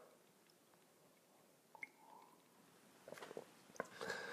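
Quiet sipping from a drink, with soft wet slurps, small mouth clicks and a gentle swallow toward the end, all heard alone with no talking.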